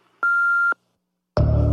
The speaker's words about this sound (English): You have reached the WWE Performance Center. Please leave your name, number, and a brief message after the beep, and we will get back to you at our earliest convenience.